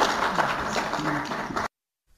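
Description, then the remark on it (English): An audience claps after an official announcement that the listeriosis outbreak in South Africa is over, a dense, steady wash of applause mixed with murmuring voices, lasting under two seconds before cutting off abruptly into silence. “Yeah, you can clap harder.”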